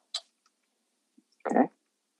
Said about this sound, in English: Okay. I'm typing my list out right now.